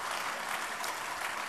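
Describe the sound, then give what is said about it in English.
A crowd claps steadily for a panel of debaters: a dense, even patter of many hands with no pauses, at moderate loudness throughout the short stretch and no voices over it. “So please, big round of applause for our panellists and let's launch.”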